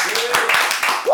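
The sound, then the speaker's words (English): A crowd claps in a steady, dense patter of hand claps to welcome the holiday season, with a voice sounding briefly over the applause. “Hey, come on, let's clap it up. Clap it up.”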